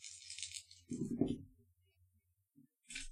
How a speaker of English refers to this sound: And I'm rolling my dice for physique? Yep. Six dice defense.